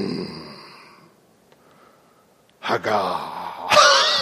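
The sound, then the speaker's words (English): A person imitates the low, rumbly growl a dog makes when someone gets too close to its bone or food, with a harsh, throaty voice. A short quieter growl comes first, then a pause, then a louder, rougher burst lasting over a second. “Yeah, it's like a low, rumbly, growly sound.”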